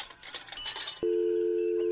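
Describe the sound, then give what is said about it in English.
A telephone line rings, on a call placed from a pay phone, with a steady, clear electronic tone that starts abruptly midway and holds to the end, preceded by a brief jumble of faint metallic clinks and clatter. “Oh, hold on, it's ringing.”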